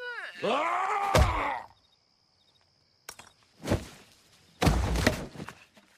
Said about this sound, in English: Impressive sound you got out of that whack on that head. Some of the womps were even louder, but then we dialed them down later. It sounded a little too broad.